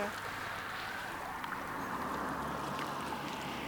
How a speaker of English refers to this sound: Yeah. The sound of the lapping water you can hear is the sound of Loch Ness. We can see some coppery shallows here on the southeastern side.